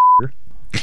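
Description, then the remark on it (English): A single steady censor bleep, a loud pure tone lasting a fraction of a second, cuts abruptly into a clipped fragment of speech and then another brief burst of voice. “But I don't remember the bleeping.”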